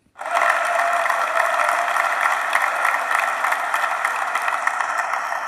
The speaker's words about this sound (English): but wherever you are, give a massive round of applause to my brother